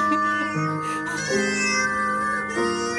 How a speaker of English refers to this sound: I mean, the cat organ's clearly the superior instrument.